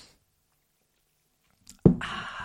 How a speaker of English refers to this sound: Yeah, I have a guava and oh my God, this just takes me back. It's just so, it just tastes like high school days, like the 2000s. Oh my God, let me just have a sip live on air for you all.